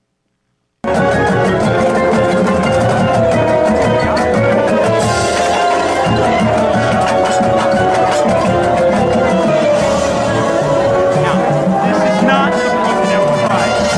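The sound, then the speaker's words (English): A marching band getting out of step plays loudly and continuously, sustained brass tones over a steady pulse of drums, with a murmur of crowd noise mixed underneath throughout. “Now, this is not them, but have you ever seen a band get out of step, marching band get out of step? Check this video out.”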